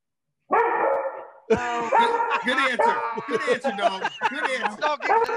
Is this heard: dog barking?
yes